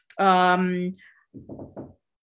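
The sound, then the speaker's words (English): Three quick, evenly spaced knocks on a door, moderately loud, coming right after a short sustained hum-like tone. “Knock at the door.”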